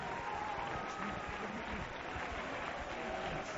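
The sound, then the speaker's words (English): An audience applauding in a house of God during a service: dense, steady clapping from many hands that holds an even loudness throughout, with faint crowd voices mixed into the wash of claps. “There are people clapping.”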